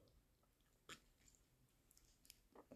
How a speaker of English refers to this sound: Sorry, I had to take a sip of coffee.